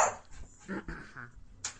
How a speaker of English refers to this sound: Stupid dog.